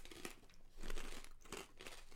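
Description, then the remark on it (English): Crisp crunching of someone chewing pork rinds, several crackly bites in an irregular rhythm with no talking. “It makes it more crunchy.”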